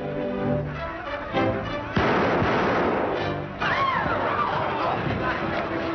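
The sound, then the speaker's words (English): A singer shoots a man as he rushes for the door: a single loud gunshot cracks out partway through, cutting into a dense, noisy commotion of crowd babble and clatter that keeps going afterward. “You must have stood in some sort of relationship to the man you shot.”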